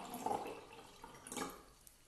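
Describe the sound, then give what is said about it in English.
Water splashes and trickles in two short bursts, like liquid poured into a glass, fairly quiet, with no talking over it. “We're doing a glass of water.”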